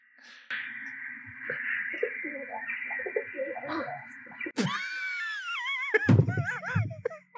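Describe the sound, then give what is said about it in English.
Rock dove pigeons cooing: a steady, droning stretch of throaty calls, then louder wavering, sliding warbles and a low rumbling coo at the end, with no talking. “It's a pigeon. Yeah. It's technically, the genius is rock dove, but I will count pigeon.”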